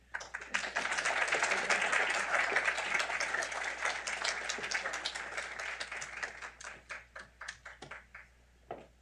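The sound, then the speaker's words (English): A crowd applauds the first panel at a panel event with dense, steady clapping that swells quickly, holds for several seconds, then thins into scattered individual claps before fading out. “And let's give another round of applause to the first panel.”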